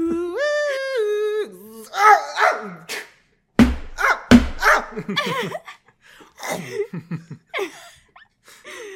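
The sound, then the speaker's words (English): A voice imitates a dog, mimicking a dog chomp from a horror sound effects CD, starting with a high, whining yelp and then growly snarls broken by two sharp, loud snapping chomps close together, followed by more throaty, excited dog-like noises. “And every once in a while a dog chomp.”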